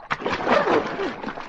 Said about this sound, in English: Pour another bucket of water on him